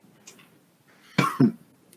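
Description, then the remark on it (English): Two quick coughs in rapid succession, fairly loud against a quiet background, with a faint rustle before them. “Cough drops. I'm coughing.”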